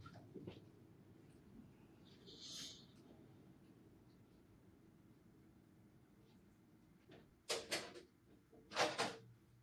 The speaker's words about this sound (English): With this said, I'm going to pause here because I got to shut my door. I made a mistake and not actually shut my door, and it keeps getting loud. So 1 second, I'll be right back,